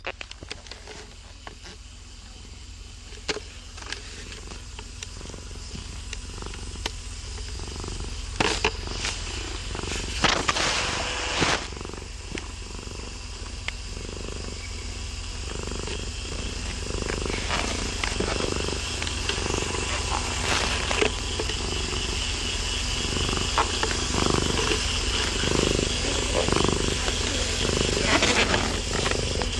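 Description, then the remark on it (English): Peppy, a domestic cat, purrs steadily for the whole stretch, a continuous rumbling hum with a soft pulsing rhythm and occasional faint rustles. “Peppy purrs, yeah.”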